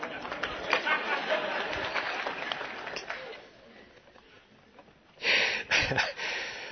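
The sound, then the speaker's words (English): An audience at a church claps over a background of murmuring voices. The clapping thins out briefly, then surges back in a louder, dense burst toward the end. “Like people start to clap at this church.”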